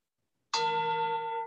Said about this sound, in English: A chime sounds as though I were in a monastery being summoned by a monk, clinging the bell to pray.